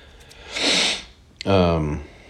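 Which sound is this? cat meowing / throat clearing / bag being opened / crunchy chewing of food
throat clearing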